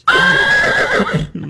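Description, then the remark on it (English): A horse lets out one loud whinny, a high wavering neigh that lasts over a second before dropping into a lower, rougher snort at the end. “He thought it was another horse.”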